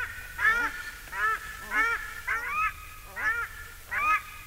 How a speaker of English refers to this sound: A pair of paradise ducks. The female's the soprano, and the male honks away in the bass.